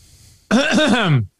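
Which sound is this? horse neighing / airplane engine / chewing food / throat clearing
throat clearing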